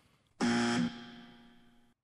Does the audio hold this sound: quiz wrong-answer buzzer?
yes